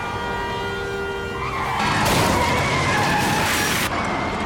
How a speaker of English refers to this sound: Then the windshield fills with a sick red of brake lights. My whole world is suddenly crumpling steel and shattering glass and a hollow crack of bone. I don't know how long it takes for the avalanche of noise and sickening movement to subside.